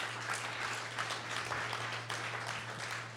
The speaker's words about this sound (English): And give a round of applause for these guys as well.